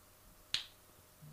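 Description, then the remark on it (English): A single sharp flick of a coin being flipped to pick how a game turns out, coming up heads, a bright, quick click that fades almost at once, set against near silence with a faint low hum rising at the end. “I'm gonna let you do the honors first on this game on flipping your coin and picking how this game turns out.”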